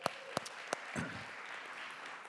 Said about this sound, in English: And yeah, we can clap for them.